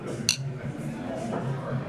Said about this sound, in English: Let's end the episode with a toast. Okay. Now, the etiquette for having a pint is clinking. Cheers.